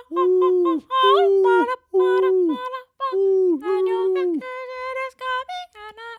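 Whale song: a string of loud, moaning tonal calls that swoop and bend in pitch, rich with overtones, following one another with short pauses and no voices.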